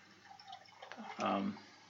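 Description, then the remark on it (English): Black IPA beer pours into a glass, a steady liquid trickle that swells into a louder, frothy gush about midway before easing off, with a faint voice in the background. “At first pour, it is definitely a black IPA.”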